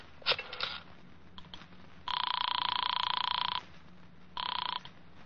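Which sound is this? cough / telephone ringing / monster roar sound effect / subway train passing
telephone ringing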